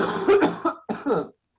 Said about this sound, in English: Here, wait, sorry. I have to have a little coughing fit right now.